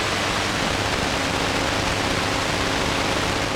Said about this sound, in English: Just as he closed the door, an extremely loud static noise blared out of the baby monitor for about 30 seconds.